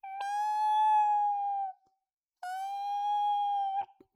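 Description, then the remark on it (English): A child's high, sustained voice imitates a cat meowing twice, each drawn-out meow lasting over a second with a short pause between, fairly loud with no other talking. “You're good at meowing.”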